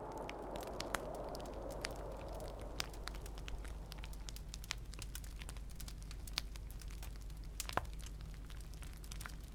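A gentle fire crackles steadily, with scattered sharp pops and snaps over a soft, continuous low rumble, calm with no voices.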